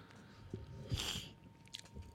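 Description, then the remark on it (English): Wet chewing with sharp crunches as a hard snack gets bitten and ground down, a few distinct bites over a couple of seconds with no talking. “Man, there is so much chewing happening I right know, now.”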